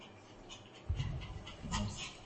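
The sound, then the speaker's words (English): A small dog pants in quick, breathy bursts, with faint whimpering mixed in over a low background hum, growing a little louder toward the end. “Hello, Toy Dog.”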